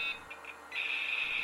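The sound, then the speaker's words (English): Dial-up modem connecting to the internet over a telephone line: a few short high beeps, then a loud, steady high-pitched screech with a hissy, static-like edge that carries on to the end. No voices. “You heard the dial-up. You heard the connection.”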